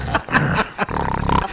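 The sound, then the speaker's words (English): A voice imitates loud snoring: harsh, guttural rasping snorts repeated in a rough rhythm, ending in a long buzzing drone with no words spoken. “Snoring. It's like, he won't wake up.”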